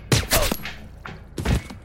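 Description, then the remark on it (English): A rapid volley of loud, sharp gunshots rings out, followed by a couple of isolated shots and then another quick cluster of blasts, with no voices. “She didn't make it very far out the door before I emptied rounds into her”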